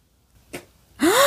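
A woman gives a sudden, sharp gasp: a short breathy intake, then a loud voiced gasp rising in pitch. It's close and clear, with no talking.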